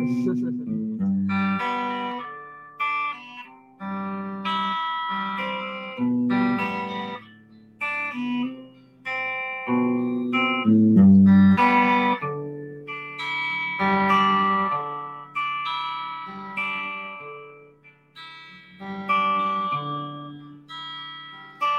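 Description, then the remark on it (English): An electric guitar plays a run of strummed chords in a steady, rhythmic pattern with short gaps between phrases. The tone is effected and ringing, and the playing stays loud throughout. “It's an electric guitar.”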